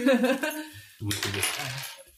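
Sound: ten-sided die being rolled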